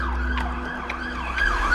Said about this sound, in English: It didn't sit right with me, so I got in behind him. I put my emergency lights, sirens on.